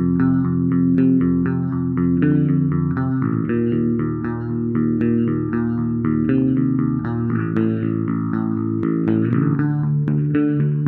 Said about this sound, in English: It is a weird state of affairs where you're drawn between just wanting to go home and be at rest as opposed to experiencing more fun, and I think this song captures that feeling.